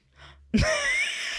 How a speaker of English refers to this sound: I waited till you stopped. Just so shocked you had to cough.